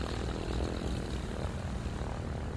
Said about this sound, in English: The two planes take off. From everybody watching, they take off much faster than they're supposed to.